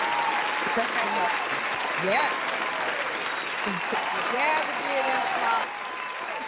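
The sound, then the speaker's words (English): A crowd applauds steadily for several seconds, a dense, even wash of clapping with scattered voices and whoops rising over it, easing slightly in the final second. “So I'm going to go ahead and give them an applause that they will continue.”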